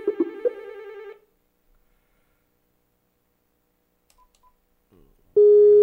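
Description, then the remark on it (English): A short electronic Skype call ringing tone plays, stops, then after a few seconds of near silence a sustained steady beep tone starts loudly, like a call connecting. No one speaks. “So we are going to try to get a hold of him on the old Skype-a-rooney and see what happens here.”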